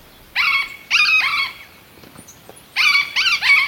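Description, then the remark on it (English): A yellow-eared parrot, one of Colombia's birds, gives loud, nasal, harmonic squawks, two or three in a quick burst, then a short pause before another rapid run of several calls. No one speaks. “Out of the hundreds of species in the field guide, meet one of Colombia's birds, the yellow-eared parrot.”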